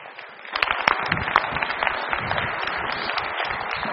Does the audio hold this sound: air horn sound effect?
no